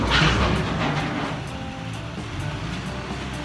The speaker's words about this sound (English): Must be the garbage truck. Holy crap. It's really loud.